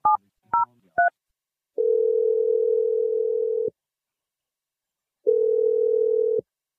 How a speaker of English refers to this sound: Let's dial the phone number and hopefully he picks up. Here we go.